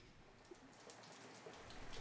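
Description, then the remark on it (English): Steady rain falls in Ireland with a broad, constant hiss, scattered droplets tapping through it and growing a little louder toward the end. No voices are present. “The parents seeking reprieve from Ireland's relentless wind and rain are headed out to the pub.”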